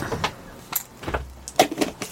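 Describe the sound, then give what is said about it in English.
A small game counter is tossed into a container, making a series of light clicks and rattles as it lands and settles, with no voices. “Chuck us that counter in there, then.”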